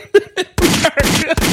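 A voice mimics gunshots: two short vocal blips, then three loud, rough bursts in quick succession, harsh, each lasting a fraction of a second.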